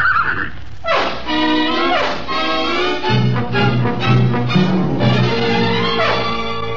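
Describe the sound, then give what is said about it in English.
A horse named Egbert whinnies loudly in several shrill, descending bursts, with a steady low drone underneath during the second half. “So we went to my bungalow, the horse and me.”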